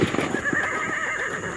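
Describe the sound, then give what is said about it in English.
A horse whinnies with a wavering, drawn-out call while hooves clip-clop in a quick, steady rhythm beneath it, moderately loud, with no voices present; it is Abraham Lincoln's horse being ridden one evening. “An unknown sniper with a rifle attempted to shoot Lincoln while he rode his horse one evening, unguarded.”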